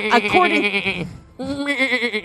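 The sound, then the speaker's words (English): Two loud sheep bleats, separated by a brief pause. Each is a long, wavering, nasal cry. “In the south of France, one afternoon, a couple of girls were in the meadow watching over some sheep when they spotted an odd-looking 13-year-old boy.”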